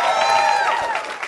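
An audience cheers and applauds at a steady loud level, with whoops and raised voices riding over a wash of clapping for the whole brief moment.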